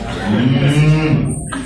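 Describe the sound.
A person hums a low, sustained closed-mouth moo, imitating a cow in one steady drone of about a second and a half, fairly loud.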